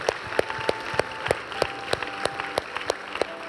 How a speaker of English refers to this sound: Come on, let's give God a round of applause today, can we?